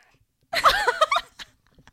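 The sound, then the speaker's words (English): A cat named Rox meows, a drawn-out, wavering cry lasting under a second, then a couple of faint short sounds trail off into quiet. “Do you hear the little Rox? Meow.”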